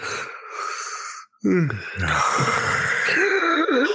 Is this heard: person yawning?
yes